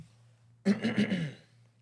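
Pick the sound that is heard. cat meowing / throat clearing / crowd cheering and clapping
throat clearing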